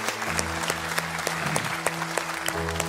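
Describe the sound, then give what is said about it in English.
An audience breaks into sustained applause for God after a prayer, dense clapping spread evenly across the full three seconds, with a steady low musical drone underneath and no voices. “Let's give God a round of applause today, can we?”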